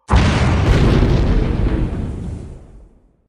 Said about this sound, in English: The twin explosions were almost simultaneous. The pyramid ship and the Makora saucer both blew apart.